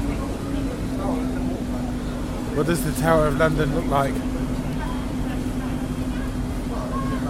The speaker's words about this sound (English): Hello? Where are we now? We're on a boat on our way to Tower of London.